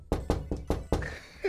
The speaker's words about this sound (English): Oh, this is the door knocker, hold on.